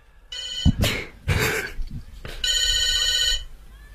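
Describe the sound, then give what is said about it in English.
An old-fashioned telephone bell rings in two bursts at Northam, a metallic jangling trill that keeps ringing while a race is being called, with some brief sounds and a voice-like murmur between the rings. “This happened last week at Northam where the phone just wouldn't stop ringing.”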